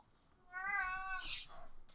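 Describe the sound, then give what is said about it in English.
A cat comes into the room and lets out a single loud, drawn-out yowl, its pitch wavering before it breaks into a harsh, raspy end. “come into room, and then just screm. Cats do that.”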